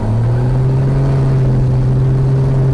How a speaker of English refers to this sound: When that throttle gets super loud, you'll hear it. That's when we go screaming down the runway. Once I'm in the center line, I get a full throttle.